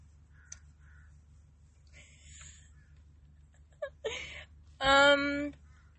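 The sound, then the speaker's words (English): Harsh crow caws ring out, a few scattered calls building to a loud, raspy cry near the end, over a low steady background hum. “And these fucking birds.”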